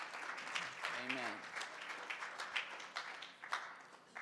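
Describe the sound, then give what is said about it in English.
A crowd, just told to be seated, claps hands in a steady, dense wash of applause, fairly loud, with a brief voice rising faintly underneath near the start. “You may be seated and clap your hands while you're at it.”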